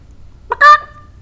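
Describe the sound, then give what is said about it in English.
A single loud, harsh chicken squawk rings out, a brief rising cluck followed by a sustained honking cry that fades within a second, with no talking. “Speaking of black chickens.”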